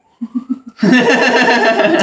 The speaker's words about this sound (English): Yeah. So, wow, sirens.